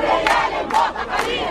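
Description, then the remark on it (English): A large crowd of demonstrators chants loudly in unison at the gate of Qasr al-Ittihadiyya, a presidential palace on the outskirts of Cairo, Egypt, voices surging in rhythmic bursts of shouted phrases with a dense roar of many people sustained throughout. “Demonstrators gather at the gate of Qasr al-Ittihadiyya, one of the presidential palaces on the outskirts of Cairo.”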